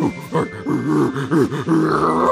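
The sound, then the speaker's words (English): A man imitates a monkey with a rapid run of throaty grunts and hooting whoops, the pitch swooping up and down in repeated voiced bursts, fairly loud and continuous, with no ordinary speech. “Oh, I'm not making the monkey sounds.”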